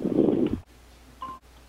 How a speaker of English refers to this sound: Can you unmute yourself by hitting *6 on your phone, please?